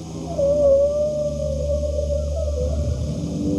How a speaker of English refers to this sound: The sharks talk like whales now.